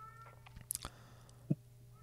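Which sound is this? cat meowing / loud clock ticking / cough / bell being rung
cat meowing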